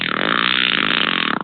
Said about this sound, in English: Well, we are known as proper gentlemen because we always ask, do you mind if I fart?